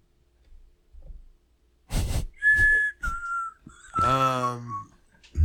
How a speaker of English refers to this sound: Why are you whistling into the microphone? I was just making sure it wasn't me fucking staticking.